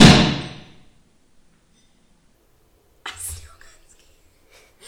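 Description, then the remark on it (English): A bottle of bubbly pink Moscato champagne is opened: the cork pops with one sharp, loud burst whose hiss fades over about a second, followed by quiet and then a brief rustling, breathy noise. “It didn't fly across the room that time, though. But it still scared me.”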